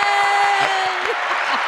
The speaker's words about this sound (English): that's a very good analogy because central banking system, that deserves an audience cheer. Yeah, woo! Yay!